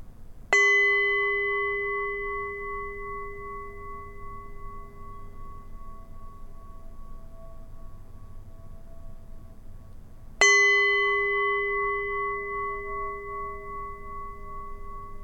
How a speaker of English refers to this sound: I'm going to ring a bell, and I want us to try to exhale for as long as the bell is ringing.